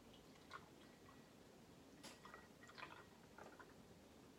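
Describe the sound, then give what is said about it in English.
Soft squelching of a wet tea bag being squeezed, with a few faint drips of water falling in short irregular bursts against a quiet background, no voices. “Squeeze it just a little bit. put it here.”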